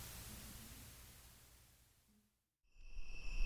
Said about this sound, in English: Night crickets, recorded from my front porch on the Zoom H1.